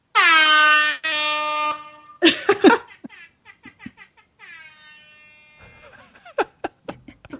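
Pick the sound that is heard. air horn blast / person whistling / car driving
air horn blast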